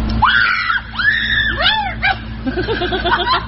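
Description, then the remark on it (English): A girl's high-pitched screams and shrieks rise and fall in several excited bursts, loud, with breathy squeals and a low background hum, as she tries to rescue a squirrel from a kiddie pool. “That's a girl trying to rescue a squirrel from a kiddie pool. Let me save you, she screams.”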